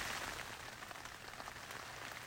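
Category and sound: nature, rain falling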